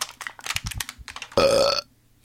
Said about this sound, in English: Give you a preemptive burp. Yeah, I was going to say, like, you should have timed that just a little bit closer to the... You don't hold them back. When they come, they come. That's just how it works.